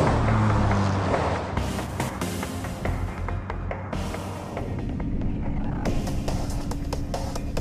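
A steady low engine rumble with road noise from inside a bus riding along the road to Harbortown, joined by occasional rattles and creaks as it drives, loud and continuous with no voices.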